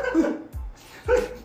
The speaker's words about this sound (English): I didn't even mention your dog is like agreeing with us. I know. She's like in the zone.